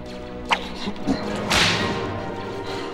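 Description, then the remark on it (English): A whip cracks with a sharp snap toward a hook on the ceiling, followed by a brief swishing burst of air, all over a steady tonal background hum. No one speaks. “What's this? A whip? You've got to be kidding me.”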